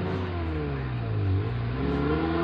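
A sports car engine revs loudly, its droning pitch sagging briefly mid-clip before climbing again, with no voices over it.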